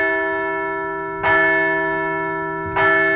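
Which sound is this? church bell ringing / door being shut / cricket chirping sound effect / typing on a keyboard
church bell ringing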